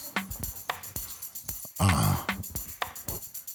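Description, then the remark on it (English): Rhythmic African hand drumming with sharp, repeated hits at a steady moderate pace, joined midway by a brief, loud, buzzing tonal burst before the beat carries on. “And what you hear behind you is the beat of life. That's them African drums.”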